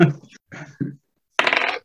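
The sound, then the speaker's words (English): Dice clatter and rattle in a few quick bursts, then tumble across a hard surface in a brighter, scattered rattle, rolled for a perception check and coming up 5. “Ooh, I rolled a 5.”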